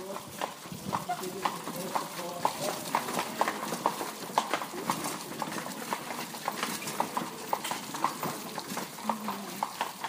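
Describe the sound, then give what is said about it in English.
Steady clip-clop of horse hooves on pavement, a regular rhythmic beat from a white horse-drawn carriage with a black top, pulled by two white mares with gray-brown spots, at St. Stephen's Platz in light rain, with faint background murmur of street noise. “We saw a horse-drawn carriage that I liked.”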